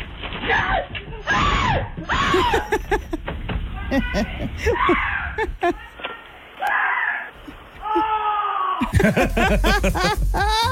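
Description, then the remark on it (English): A man on his front porch in Raleigh, North Carolina, lets out several high, panicked screams and yelps in quick succession as a rat jumps up and clings to his shirt, loud, with strained, wavering pitch and breathy gasps between bursts. “And yes, he screamed like a little girl.”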